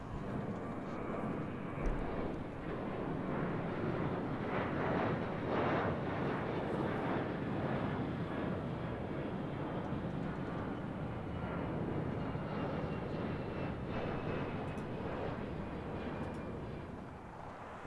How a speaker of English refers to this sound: Oh, Jesus. Car just drove by. We got dropped somewhere in the highway. Somewhere in the middle of nowhere, really.